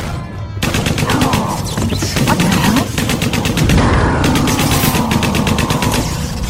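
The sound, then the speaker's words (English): A Tommy gun fires metal slugs in a loud, sustained stream of rapid, evenly spaced shots that continues almost without pause after a brief quiet start. “Borg adapt to energy weapons, but they never seem to find a way around good old-fashioned metal slugs.”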